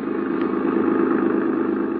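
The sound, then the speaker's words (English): A car engine drones steadily while driving through a harbor district, a continuous low, even hum that holds at a constant level from start to finish with no voices. “We were shortcutting through the harbor district when I began to realize that the same car had been behind us ever since we'd left Maria's.”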